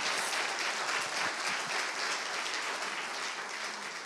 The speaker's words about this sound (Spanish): ¿Cuántos dan un aplauso al Señor por esta palabra?